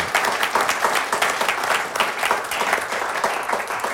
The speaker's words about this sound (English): Yes, a round of applause again.